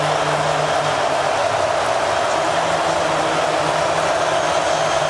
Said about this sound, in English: Here we go. Crowd gets loud.